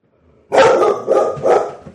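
A dog named Gracie barks loudly, three sharp barks in quick succession with short gaps between them, with no other sounds around.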